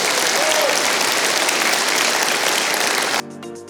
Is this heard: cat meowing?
no